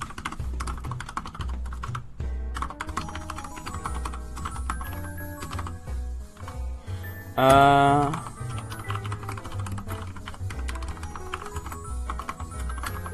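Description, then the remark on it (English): Fast, relentless typing on an upgraded computer keyboard while writing a tweet, loud, a dense clatter of keystrokes for the whole stretch, briefly interrupted by a short, loud tonal blare partway through. “today's topical thesis I forgot to write in a tweet, so it's time for the keyboard sounds to intensify as we write this damn tweet, and I hope you like the keyboard sounds, because the keyboard has been upgraded, so the intensity is through the roof.”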